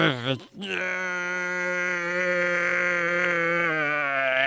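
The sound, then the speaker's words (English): A human voice, portraying a woman in labor, lets out a long, loud, sustained low bellow, droning steadily for several seconds after a brief opening cry, imitating a sea cow's bellow. “Ma'am, I hate to say you sound like a sea cow.”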